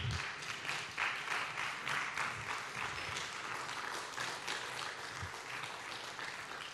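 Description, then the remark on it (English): A church audience, asked to stand during a morning service, applauds God for his word for several seconds, a dense, even wash of many hands clapping at once with no voices standing out. “Come on, would you stand this morning and give God a good round of applause today for his word?”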